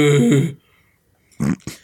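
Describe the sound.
A voice imitates a low moan: one short, deep, droning groan that fades out, followed after a pause by two brief, rougher vocal bursts.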